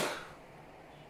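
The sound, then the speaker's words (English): A single faint sneeze: one short, sharp burst of breath and noise that fades quickly into quiet. “Bless you.”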